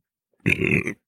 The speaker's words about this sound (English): And once again, I'm probably going to belch.